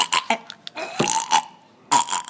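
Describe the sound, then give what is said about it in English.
A voice reenacts retching and vomiting from being ill: a few sharp, guttural heaves, then a long strained gagging groan, and another loud retch at the end, with no words spoken. “I left the marvellous volunteers in the shop here while I puked and retched.”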